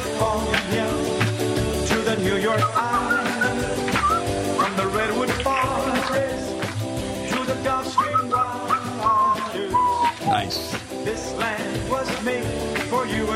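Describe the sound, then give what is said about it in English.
A man whistles a simple folk-style melody in a bright, wavering tone, carried over a busy, full-bodied instrumental backing with steady rhythmic strikes throughout. “Put him on because he's a whistling.”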